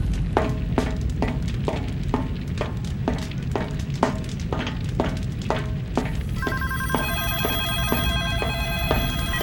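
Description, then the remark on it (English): Telephone bells ring in a rapid, steady rhythm of sharp metallic bursts, then give way to sustained, overlapping tonal rings, all over a constant hissy background with no talking. “By the way, hope you like telephones. Once you're done, don't be surprised if there's a ringing in your ears for a little while.”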